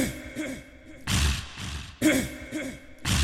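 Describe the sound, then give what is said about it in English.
Someone hawks up phlegm, a few loud, raspy, gurgling throat-clearing bursts, each lasting about a second, after a brief low throaty rumble. No one speaks. “Had to hawk a little loogie there.”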